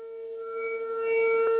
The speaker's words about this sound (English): That is so loud. It's spinning around in a circle. Are these, is this like emergency sirens that they have to test every now and then? Yes, and that guy goes around taping them. Jasper, Texas had one every day at noon. I like that pitch.